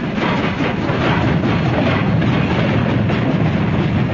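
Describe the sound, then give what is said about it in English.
Train wheels of yellow celery cars pulled by an engine out of Los Angeles at night clack steadily over rail joints in a continuous, loud rumble, with a repeating rhythmic clatter riding on a deep low-end roar. No voices are heard. “Splatter to clicks of a rhythm. Wobble and sway. Clank and snap. Cold yellow celery cars. Sucked by an engine.”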